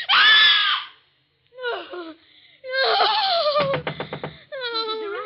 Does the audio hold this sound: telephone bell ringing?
no